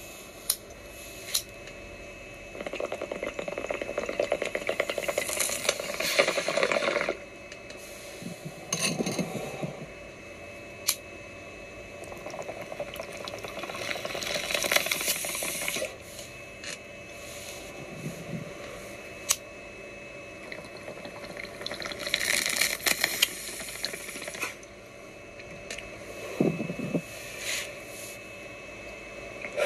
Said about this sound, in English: Yes! My man said three bong rips in under a minute and still had time to get out his question.